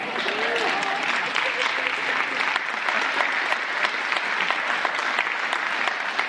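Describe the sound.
A crowd applauds steadily for several seconds, dense clapping at an even, sustained level, with faint voices and murmurs woven underneath.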